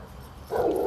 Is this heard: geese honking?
no